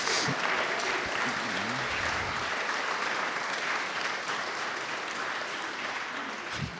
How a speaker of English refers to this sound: I know you're clapping. Think about who you're clapping for. It is both you and infinitely more so Christ through you, but not negating you.